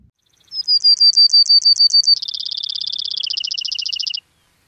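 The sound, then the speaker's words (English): A Brewer's sparrow sings a loud trill song: a series of clear, evenly spaced notes that shifts into a faster, buzzier rattle, then drops slightly in pitch before ending abruptly, with no one speaking. “The Brewer's trill, however, is bigger and more robust sound.”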